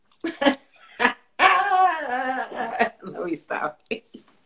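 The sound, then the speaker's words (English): A small pup lets out a string of short, high-pitched yaps and one drawn-out whiny bark, fairly loud, with faint voices. “You know, I got my little pup.”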